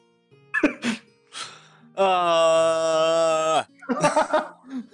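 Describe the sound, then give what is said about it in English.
A person imitates a screaming horse: a few breathy vocal bursts, then a loud, strained, steady cry held for about a second and a half, followed by more choppy, huffing sounds. “Yeah, no, the horse screamed at me.”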